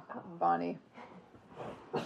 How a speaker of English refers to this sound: Uh-oh, we lost our dog. She'll be back. A little bit of coughing, a little bit of barking.